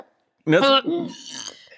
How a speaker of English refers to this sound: I think it is burped. Yes, you did. It was disgusting. It came through so loud and clear. Sorry. Ew. You're gross.